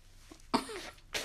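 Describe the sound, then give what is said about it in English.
A wet snuffling burst followed a moment later by a short, sharp sniff as a person with a runny nose clears it, with no talking. “My nose is running for some odd reason.”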